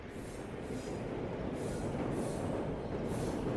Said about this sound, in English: At 11 a.m, they hopped on the District Line train, travelling 7 stops east to Victoria, and amongst a sea of locals and tourists.